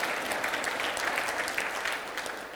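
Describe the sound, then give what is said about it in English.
An audience applauds steadily, a dense wash of many hands clapping at an even, moderate loudness throughout with no voices standing out. “That's probably a good time to clap if you want to.”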